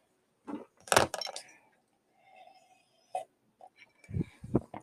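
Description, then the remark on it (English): A glass clinks sharply a few times amid soft sipping, then a quick series of low gulping swallows, with quiet pauses between the sounds, as someone drinks Stash green tea from a glass. “Sorry about the drinking noises. I'm having a glass of green tea, which, by the way, I kind of hate, kind of love.”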